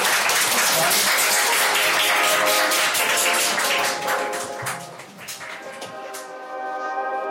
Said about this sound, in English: A round of applause